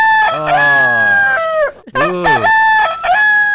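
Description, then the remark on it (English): A rooster crows loudly, one long strained cock-a-doodle-doo followed quickly by a second crow, with other hens or birds faintly audible underneath. “I don't think he's a hen, though, that guy. He might be in the hen house.”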